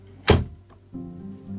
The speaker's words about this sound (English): A door creaked open.